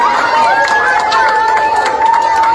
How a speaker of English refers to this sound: The third and fourth graders lined the halls and cheered, clapped, and high-fived the fifth graders as they walked by.